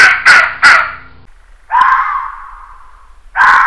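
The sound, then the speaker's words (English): A fox gives a series of harsh, raspy calls: three quick hoarse yelps in a burst, then two longer drawn-out rasping cries after short pauses. The calls are loud and stand alone, with no talking. “That is one of 30 some odd different sounds that they make.”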